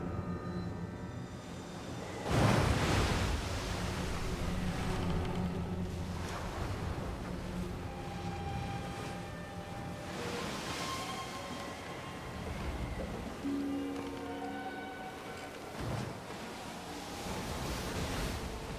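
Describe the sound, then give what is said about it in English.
Strong wind roars over choppy lake water at night, with waves surging and splashing in repeated loud swells. The steady rush fills the whole scene, and no voices are heard. “By then, a strong wind was blowing and stirring up the water.”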